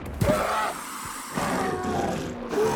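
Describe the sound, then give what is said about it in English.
Two dinosaurs, one of them feathered, roar and hiss while fighting, rolling across the dirt, biting and clawing: a loud burst of snarling growls and rasping hisses that flares, dips briefly, then surges again with no voices. “The two dinosaurs rolled across the dirt, biting, clawing, roaring, hissing.”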